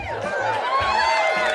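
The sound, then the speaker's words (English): A large, sold-out live crowd in Los Angeles cheers and whoops, many overlapping voices forming a dense, steady roar that stays loud throughout the short burst. “Look at this sold out crowd.”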